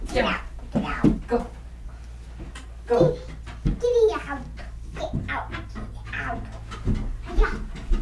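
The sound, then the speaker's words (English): A dog pants in quick, rhythmic breaths, with a child's voice and other speech mixed in over a steady low hum. “Get out, doggy.”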